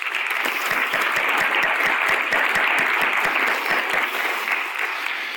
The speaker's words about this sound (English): I think we should give ourselves a round of applause. I do not know of a more inclusive education system than the one we have here. So take a bow.